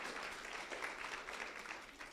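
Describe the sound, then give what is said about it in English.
Audience applause: a steady, dense wash of many hands clapping together, with a rapid crackling texture that holds at an even, moderate level for about two seconds. “Can I hear some applause?”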